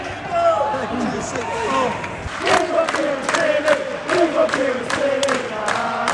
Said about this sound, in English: Kieran Tierney's warming up, and so everyone stood up to give him a big cheer.